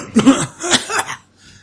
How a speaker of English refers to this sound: And you start coughing deeper.